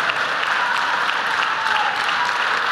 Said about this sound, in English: Oh, come on. You can do better than that. Go ahead and give God a good applause of praise here in this house. Hallelujah, hallelujah.